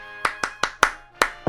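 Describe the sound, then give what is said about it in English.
Sharp hand claps ring out in a quick patterned rhythm, six crisp claps with a brief pause before the last ones, tapping out a song's beat to work a clap-controlled device whose audio sensor responds to different clap rhythms by turning the matching appliance on and off. No voices. “Inside, the patented audio sensor will respond to different clap rhythms, turning on and off the corresponding appliance.”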